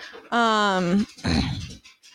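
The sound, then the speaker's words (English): A female dog, Pinkerton, lets out a drawn-out, high whimper that slides slightly downward, then follows with a short burst of rough, breathy panting. “Yeah, it's harder on our end to hear at least, but I hope we get her little panting in it because that's only cute.”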